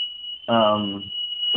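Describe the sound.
A shrill, steady alarm tone sounds continuously from start to finish, loud, while a voice briefly speaks over it midway through.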